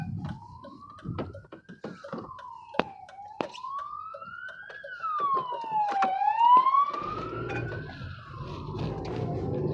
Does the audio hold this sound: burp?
no